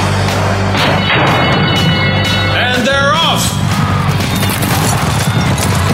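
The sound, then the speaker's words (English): A loud, dense rumble of galloping racehorse hooves at the start of a horse race pounds on steadily and relentlessly, mixed with a noisy crowd roar and a brief rising tonal sweep midway. “The horses are at the gate.”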